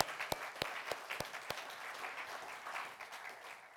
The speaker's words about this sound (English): Let's give God a round of applause for the praise team this morning.